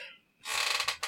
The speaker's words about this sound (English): Excuse me, I'm going to just sneeze. Bless you.